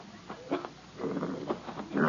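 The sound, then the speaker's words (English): A mongrel dog stuck again in a neighbour's fenced yard whimpers in a string of short, high, whiny cries, fairly quiet, with a longer pleading whine near the end. “Margaret, that's the stupidest animal I've ever seen in my life. This is the eighth time he's been stuck in the Willoughby's yard”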